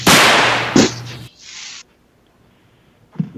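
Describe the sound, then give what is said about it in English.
Loud fizzing and crackling of fireworks being lit in a bathroom, with a sharp pop in the middle, then a fading hiss, a brief lull, and one more bang at the end. “Because we're lighting the fireworks in the bathroom.”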